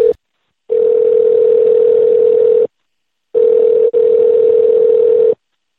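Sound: telephone call ringing out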